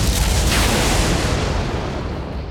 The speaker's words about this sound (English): A bolt of lightning tore the spotless sky, crashing down to Lynceus's raised spear.